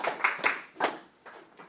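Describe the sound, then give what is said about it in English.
A few scattered handclaps from an audience in the room at a church gathering, welcoming a woman speaker, sharp and uneven, the first several fuller and louder before thinning out into softer, sparse claps. No one speaks. “You can welcome her if you're here in the room and online with your virtual clapping emojis.”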